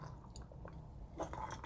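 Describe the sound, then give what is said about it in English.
A brief sip of water: soft slurping and a swallow or two, with faint glassy clinks. No one talks, and the sound is quiet. “I need a sip of water. My throat is dry.”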